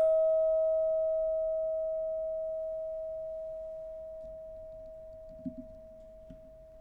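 A meditation bell struck once, a second time, during a mindful breathing meditation, its clear, steady mid-pitched tone ringing out and slowly fading over several seconds, with a couple of soft rustles near the end.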